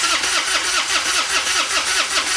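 A car engine cranks over and over without catching, the starter motor whirring in a steady, rapid rhythm, loud, with no voices. The car has been topped off with French fry oil and sits behind a BK (Burger King) restaurant.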